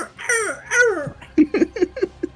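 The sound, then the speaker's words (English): A person vocally imitates a distressed parrot: two loud, high, wavering squawks, then a quick run of five or six choppy, clucking yelps that sound half like laughter. “It sounds like a wounded parrot.”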